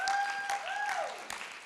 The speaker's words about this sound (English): Somebody clap your hands and thank God.